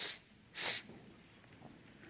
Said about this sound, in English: There's no sniffle suppressor on this mic, so please excuse me if I sniffle a little bit tonight.